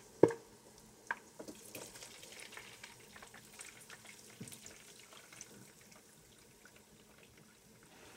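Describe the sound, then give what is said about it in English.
Hot lard sizzles and crackles as it is strained from the cracklings and poured into a glass mason jar, with a sharp clink at the start and a steady, fizzing texture that slowly fades. No one speaks. “strains the cracklings from the lard. She then pours the lard into a glass mason jar”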